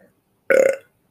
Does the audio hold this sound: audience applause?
no